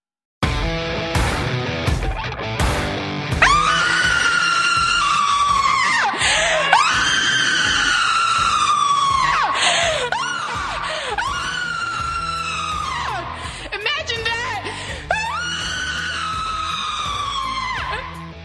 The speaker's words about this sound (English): Typical transgender Democrat shrieking at the top of her lung.